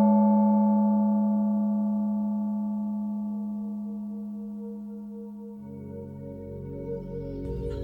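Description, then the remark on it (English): A gong sounds to begin a meditation, ringing out as one long, deep, humming tone with shimmering, wavering overtones that slowly fade, and its texture thickens and grows busier over the last couple of seconds. “A gong is going to sound, and then the meditation will start.”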